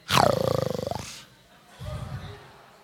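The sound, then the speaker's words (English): A lion lets out one loud roar lasting about a second, with a pulsing, throaty texture and a falling pitch, followed after a brief pause by a quieter, low rumbling growl. “Come on, a lion.”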